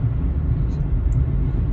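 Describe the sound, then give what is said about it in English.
Steady low rumble of road noise inside a car driving on the road toward Atlanta, a constant loud drone concentrated in the low end with no distinct events, filling the whole stretch. “This episode is recorded in a car. We live from 75. On the road again.”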